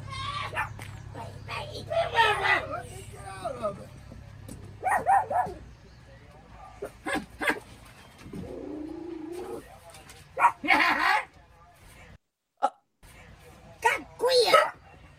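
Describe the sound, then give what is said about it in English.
Short bursts of barking come in irregular clusters, some from a dog and some from a person imitating a bark, moderately loud, with brief quiet gaps between. “One of those sounds is a dog barking, and one of them is a human barking.”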